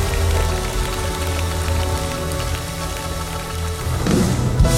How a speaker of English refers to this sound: So the rain starts falling. It falls in the river. And all of a sudden, the more the rain falls, the more the river rises.